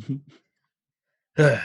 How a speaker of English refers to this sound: Like, I had this weird cough, like pulsatile drip thing. So if I'm going to cough, and I haven't done it so far in this podcast a lot, but I have to deal with that a little bit. I apologize for that.